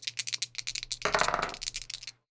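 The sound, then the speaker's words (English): Dice are rolled for a game move, rattling and clattering across a hard tabletop in a quick flurry of sharp clicks, swelling into a dense tumbling burst midway before a few last taps settle, totalling 8. Fairly quiet, with no voices. “When you size someone up, roll plus vinegar.”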